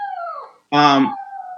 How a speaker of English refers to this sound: Your dog is angry. I think he's hangry. I fed him earlier, but he's really a picky eater. He's just a little chihuahua. He's like 2-3 pounds.